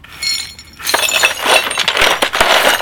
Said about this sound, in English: I see you sweeping up some glass there, eh, kid?